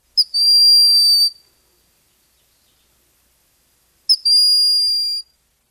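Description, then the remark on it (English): A broad-winged hawk, a small brown hawk the size of a crow, gives two thin, high-pitched whistled calls, each a quick introductory pip followed by a long, steady, piercing note, separated by a few seconds of silence. “And then there is the broad-winged hawk, whose call, like that of its relatives, is non-imposing.”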